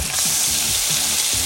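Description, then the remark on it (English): Loud sizzling of food on a hot grill, a steady crackling hiss running through the whole moment, with faint low tones pulsing underneath. “Brought to you by Hingham Lumber on your station with the sizzle.”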